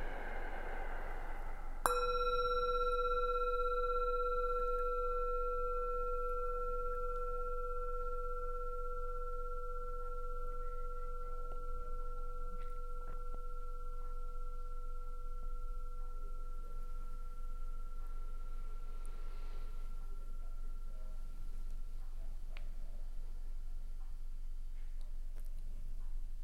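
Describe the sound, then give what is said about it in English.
A single meditation bell is struck once and its clear, ringing tone lingers, slowly fading over about twenty seconds into near silence against faint background hiss. “And as the bell, the sound slowly fades, let's take our awareness, that broad, expansive awareness, to our whole self.”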